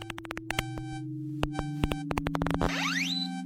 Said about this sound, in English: The beeping screen and waggling finger of the lie detector, a scientific forensic frisking to check whether emotions match language.